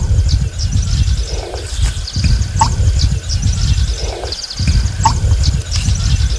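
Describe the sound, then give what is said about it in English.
An American bittern gives its deep, gulping pump calls in a steady repeating rhythm, low and resonant, in the White River Marsh in Princeton, Wisconsin, at about 5:30 in the morning, while a dawn chorus of small birds chirps faintly in the marsh. “That was an American bittern in the White River Marsh in Princeton, Wisconsin at about 5:30 in the morning.”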